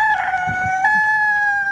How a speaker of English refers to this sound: And then we hear that. So, you know, that kind of wakes you up. If nothing else wakes you up, that rooster will wake you up.